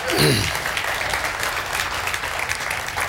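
A crowd applauds a volunteer coming up to the front, steady for about three seconds, dense overlapping claps, with a brief voice calling out at the very start.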